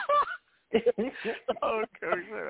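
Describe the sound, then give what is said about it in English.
A duck quack sound effect: a run of loud, nasal quacks in quick, uneven bursts, about half a dozen, clear, with a short pause after the first quack. “Duck. Okay. I had to get that in.”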